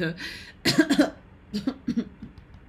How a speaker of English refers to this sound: I'm trying to get my throat clear, bitch.